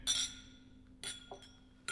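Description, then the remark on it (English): Several bright glass clinks ring out in quick succession as people toast with cheers before a first sip, each leaving a short shimmering tone over quiet room background. “Well, I'm going to go ahead and get this first sip in. Cheers.”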